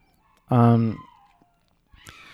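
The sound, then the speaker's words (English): A dog, one of several dogs howling like wolves, lets out a short, loud, tonal howl that trails off into a fainter, falling whine, followed by a brief rough burst of sound. “Oh, God, the dogs singing a song. Can you hear them howling like... They're like wolves.”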